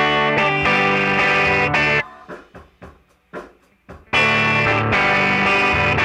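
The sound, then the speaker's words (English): An electric guitar plays through an amp turned up just to the point of breaking up, with a light, gritty overdrive: full strummed chords ring out loudly, drop to a few quieter picked notes in the middle, then return to sustained chords. “Then there's overdrive, which you can think of as the sound of an amp turned up just to the point of breaking up.”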